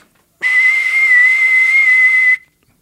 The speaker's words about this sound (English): There's a whistle in the tooth. You blow it, you see the future.